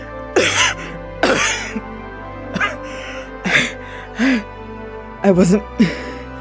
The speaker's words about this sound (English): Fee coughs up a lungful of salt water